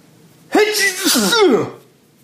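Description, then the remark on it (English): A single loud, drawn-out sneeze, with a voiced, wavering build-up before a sharp burst, then quiet afterward. “and now I'm going to sneeze.”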